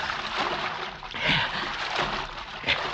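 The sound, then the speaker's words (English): Steady sloshing of water as someone wades through a creek, with a couple of louder splashes from heavy steps, and no voices. “He gotta wade the creek, even if it is full of cotton mounds.”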